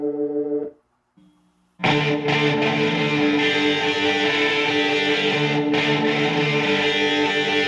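A rock track from a forthcoming deluxe-edition box set opens with a brief sustained tone, drops to near silence for a second, then loud distorted electric guitars and full band crash in and play on steadily.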